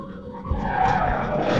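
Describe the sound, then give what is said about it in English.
Car tires skid hard under heavy, late braking, a loud sustained screech with rumbling engine noise, lasting the whole moment without any voices. “He's like, dude, it legit didn't look like he hit the brakes until he passed the Ferrari here.”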